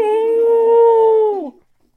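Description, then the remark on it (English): A human voice imitates a wolf howling in pain, crying "Ow!": one loud, sustained cry held steady for over a second before sliding down in pitch and cutting off, with nothing else around it. “And the wolf went, "Ow!"”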